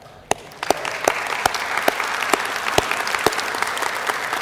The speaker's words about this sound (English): I think it'd be great to just to honor them with an applause.